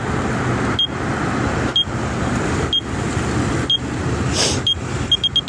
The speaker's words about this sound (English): And now I can walk, and we got the crosswalk. And we also got some parallel traffic, as you can hear.